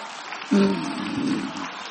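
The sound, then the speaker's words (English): A church audience stands and claps hands in praise in a continuous, dense, steady wash of applause, with a low sustained tone and faint voices rising underneath partway through. “Come on, stand to your feet and clap your hands and give Him some praise right now.”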